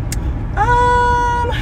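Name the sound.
car interior driving noise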